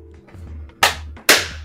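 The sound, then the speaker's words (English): Two sharp, loud hand claps about half a second apart, made to sync audio with video, each a bright crack with a short ringing decay, over a low steady hum with no talking. “It's about your audio being my clap your with video.”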